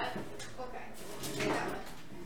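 An office chair being swapped out for another chair: a steady mix of clunks, rattles and scraping handling noise, swelling slightly midway, with no clear speech.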